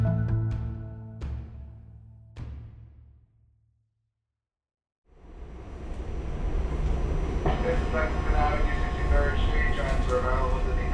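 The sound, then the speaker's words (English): A few ringing chime tones fade into a brief silence, then a Q train on the Second Avenue subway in New York in 2022, with 72nd Street as its next stop, rumbles loudly and steadily, its rolling roar topped by a high electric motor whine. “This is the 96-year bound Q train. The next stop is 72nd Street.”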